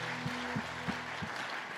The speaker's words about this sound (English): Put your hands together. Once again.